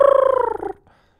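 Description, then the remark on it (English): A small dog in a video lets out a short, high howl with a rapid warbling quiver, its pitch sliding slightly downward before it breaks off abruptly, leaving a faint, brief trailing whine. “Look at that little howl, dude.”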